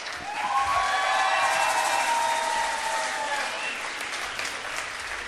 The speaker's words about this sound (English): And a good round of applause for … on trombone.